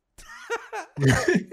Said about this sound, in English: So excuse the cough, guys, again, but that's our show before I hack up another lung.